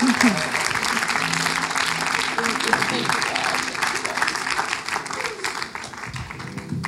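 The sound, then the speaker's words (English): An audience claps for Jesus steadily for several seconds, a dense, sustained wash of applause with faint voices murmuring underneath before it begins to thin out near the end. “You can clap for Jesus.”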